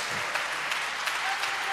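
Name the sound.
audience clapping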